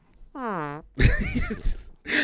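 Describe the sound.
A voice blows a loud, sputtering raspberry with the mouth imitating a fart, lasting about a second. A short hummed tone comes just before it, and another burst starts at the end.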